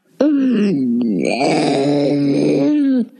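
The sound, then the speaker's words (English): A four-month-old baby girl's gravelly, growling cry, one continuous strained wail of about three seconds, loud, rising and falling in pitch with a rough, throaty edge. “my four-month-old daughter, …, who had an interesting growling cry”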